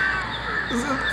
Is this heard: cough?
no